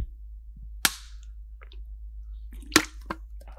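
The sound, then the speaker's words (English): Three sharp, loud hand slaps crack out at irregular intervals during a game of slaps, one early and two close together near the end, over a low steady hum with faint shuffling between them. “We don't know what to do, so we're playing slaps and drinking a can of V.”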